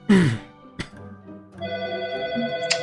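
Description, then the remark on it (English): A phone ringtone starts up after a short throat-clearing burst and a click, playing steady, bright electronic tones that continue to the end at moderate loudness. “There's a lot of phone going on today.”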